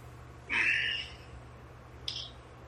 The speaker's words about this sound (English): Six parrots in my backyard.